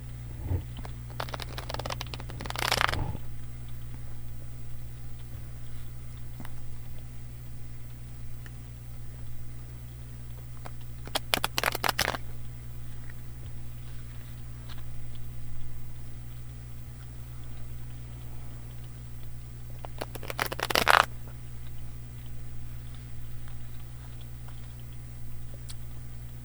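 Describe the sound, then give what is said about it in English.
A deck of tarot cards is shuffled in three brief, crisp bursts spaced several seconds apart, with a low steady hum and quiet stillness in between; nobody speaks. “So, as I was shuffling, I saw the Hermit and the Queen of Cups.”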